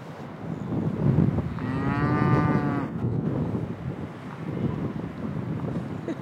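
A single long, drawn-out moo from Scottish Highland cattle answering a call rings out over steady wind rumble, rising and holding for over a second before fading. Nobody speaks.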